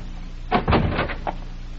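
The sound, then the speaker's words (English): The door of a shack opens with a clattering latch and a short scraping swing lasting about half a second, followed by a single sharp click, with no one speaking. “If the door's unlocked, flash your light inside the minute I open it.”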